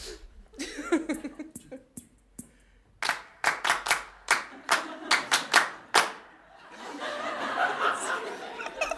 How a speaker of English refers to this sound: I've got a little something for you that I wanted to save, and maybe we could have a little clap or something.